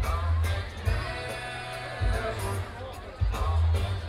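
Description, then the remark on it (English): A dense crowd after a concert, heard from the middle of it, fills the air with continuous babble and chatter, with heavy low rumbling bursts and occasional louder swells of voices throughout. “We're still stuck in the middle of the crowd.”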